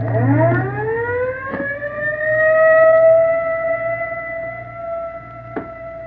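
An ambulance siren winds up from a low pitch into a loud, sustained wail that holds steady, over a low engine rumble with a couple of sharp knocks.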